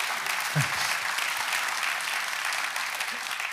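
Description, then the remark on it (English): An audience claps steadily for a few seconds, a dense, even patter of many hands that holds at a constant level throughout without rising or fading. “Mom, you can clap for that if you want to because everybody else is being quiet.”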